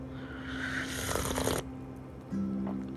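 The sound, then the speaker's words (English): A single drawn-out slurping sip of hot coffee, an airy rush lasting under a second, followed by a quiet pause with a low steady hum in the background. “Oh, it just deserves a third sip.”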